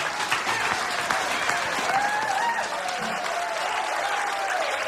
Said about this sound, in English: Come on, cheering. Crum and Fort Worth.